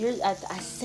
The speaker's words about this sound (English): Let me talk a little louder because it's raining so hard because I'm tapping in with my mermaids, bitch. It rained out of nowhere.